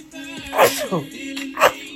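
A person sneezes sharply, followed about a second later by a second short, breathy burst, with a faint steady tone humming underneath.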